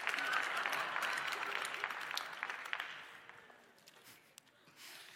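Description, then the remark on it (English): A crowd claps in a dense burst of applause that is strongest at the start, then thins and fades over several seconds, with a few scattered claps lingering at the end. “That's gonna get a clap.”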